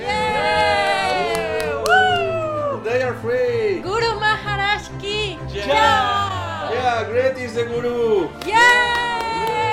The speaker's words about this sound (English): And when they crossed the threshold of Gwalior Gate, all their shackles were finally removed. A huge crowd was waiting outside, watching and cheering this glorious scene.